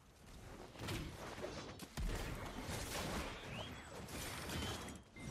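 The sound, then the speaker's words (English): Video game sound effects of a character class: a rattling chain from the anchor and booming explosions from the Shift, R and B abilities, with several loud impacts and whooshes over about five seconds in a dense, continuous wash of noise. “Like, the chain from the anchor, the explosion from shift R&B. Like, this sound effect, listen to the sound effect, dude.”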